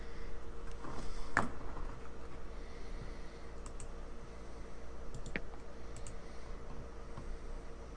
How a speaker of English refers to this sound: Sorry, I keep clicking on things that just intrigue me, like Critical Role and just looking at a few different covers.